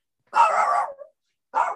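A dog barks, a sustained loud bark followed after a short pause by a second one that is cut off at the end, with no talking.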